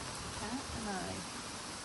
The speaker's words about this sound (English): I can't believe how much it's raining right now.